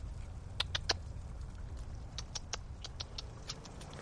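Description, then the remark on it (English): A chipmunk near a big tree at a trail entrance gives a series of sharp, high chips, about a dozen short calls at uneven intervals, over a steady low outdoor rumble in light rain, with no talking. “There's a big tree. Chipmunk.”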